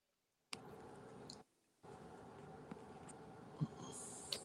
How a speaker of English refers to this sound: Okay, I'm just typing what you're saying. I don't have to agree.